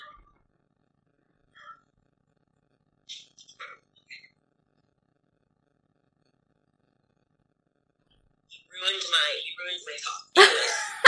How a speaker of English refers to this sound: Okay, I'm so sorry, but my dog is barking so much.